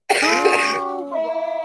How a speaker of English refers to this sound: Every time you cough, here's what I'm going to do. Go ahead and cough.